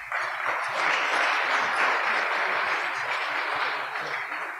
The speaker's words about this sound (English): and we'll give him a round of applause as well.